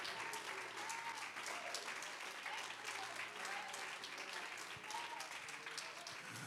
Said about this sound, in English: Somebody clap your hands and magnify.